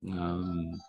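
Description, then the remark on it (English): A dog lets out one loud, drawn-out bark, lasting nearly a second, with no talking over it, after the doorbell rang. “See, your dog is in agreement with me.”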